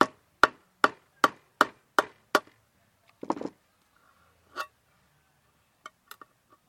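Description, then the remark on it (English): A hammer drives an old wood-handled knife into a can of beans to open it, with seven sharp, evenly spaced metallic strikes, then a brief scraping rattle, one ringing clang and a few faint ticks. “So I took the old wood-handled knife and my hammer.”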